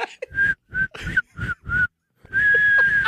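Someone whistles a short tune: five quick, clear notes in a bouncy rhythm, a brief pause, then one long sustained note. Close and fairly loud, with no talking.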